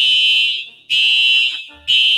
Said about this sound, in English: It's on fire. Fire alarm.